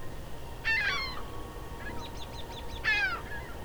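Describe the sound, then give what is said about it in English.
Two loud, nasal wailing calls of a ring-billed gull in a meadow on a cool spring evening, each a short harmonic cry dropping in pitch, spaced a couple of seconds apart over steady outdoor noise, with faint chirping from smaller birds between them. “The plaintive wails of the ring-billed gull.”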